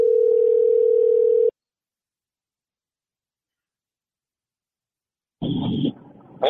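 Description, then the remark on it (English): A steady, loud phone dial tone hums for about a second and a half as a call is placed on a phone, then cuts to silence before a burst of brighter electronic tones and noise from the line near the end. “I am pressing call on my phone here, and I have a surprise for you.”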